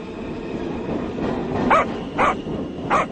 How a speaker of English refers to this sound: Was that a dog on the subway tracks? It was a dog on the subway tracks.